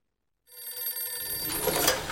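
An old-style telephone bell rings out after a brief silence, a continuous, metallic jangle that grows brighter and fuller toward the end. No one speaks.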